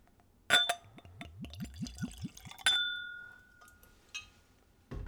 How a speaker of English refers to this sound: Poured into the glass, of course, this gin looks as clear as gin